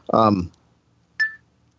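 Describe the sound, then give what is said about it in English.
A short, clear electronic beep from a smartphone app as the phone is pointed toward a place, heard once after a brief burst of voice-like sound, with only a faint low hum in the background as the phone vibrates. “not only can we point at things in the environment, but we also hear a beep when we point to a place, and the phone begins to vibrate, which I guess I should have held it up to the mic a little closer.”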